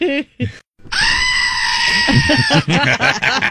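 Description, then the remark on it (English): A loud, shrill comedic scream with a bleating, goat-like quality holds for about a second and a half, with people talking just before, faintly beneath, and right after it. “That scream was because I haven't gotten Linda anything for Valentine's yet.”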